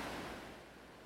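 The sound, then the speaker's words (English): Gently lapping waves at a beach make a soft, steady wash of water that eases slightly quieter over a brief moment, with no voices present. “I nestled into my blanket, closed my eyes, and let the sounds of the gently lapping waves drift over me.”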